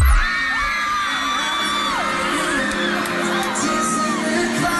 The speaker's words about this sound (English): All right, I've got two audio gems to play for you tonight, my friends. The first one is a very happy crowd.